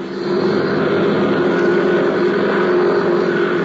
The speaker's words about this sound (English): few miles away at the Curtis airfield, a young flight instructor was warming up his plane, preparing to take off.